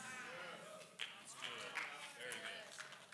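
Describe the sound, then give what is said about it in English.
A handful of scattered claps from a small audience during a sermon, sparse and uneven, a few sharp hits spread over a few seconds against a hushed murmur. “I hope, what a pitiful clap.”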